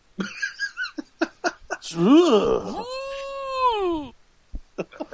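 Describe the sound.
After some brief chatter, a voice lets out a long, warbling, cow-like moo as a joking pronunciation of the X in the made-up word "Zox", lasting about two seconds, its pitch swooping up and then sliding down, before short bursts of talk resume.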